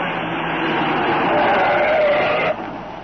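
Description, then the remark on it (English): The Green Hornet's car roars loudly and steadily as it speeds away with troopers sent after it, a rising whine climbing through the noise before the sound abruptly drops off near the end. “You troopers, after that car. It's going too fast.”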